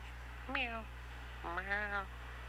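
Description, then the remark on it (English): Two drawn-out, falling meows, the second longer and wavering, with a short pause between them and a steady low hum underneath. “Meow. Meow. Meow.”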